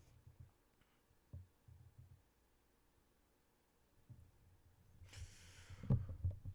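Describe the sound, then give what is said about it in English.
After several quiet seconds of faint bumps and room noise, a door opens near the end with a short airy rush followed by a couple of heavy low thuds. “Door opening.”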